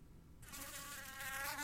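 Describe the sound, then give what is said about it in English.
A fly buzzes, its steady droning whine starting abruptly and continuing with slight wavering in pitch and loudness. No voices are present. “It's a buzzing fly.”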